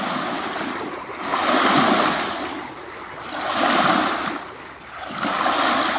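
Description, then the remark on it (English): Waves wash steadily onto the shore of Lake Superior (Kitchigami), swelling and receding in slow surges about every two seconds, with broad hissing surf and no voices. “Greetings from the shores of Kitchigami, the big lake.”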